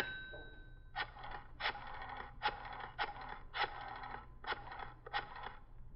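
A telephone is dialed to call an office: a brief steady tone gives way to seven quick, evenly paced bursts of clicking, like a rotary dial spinning back, fairly loud with no voices.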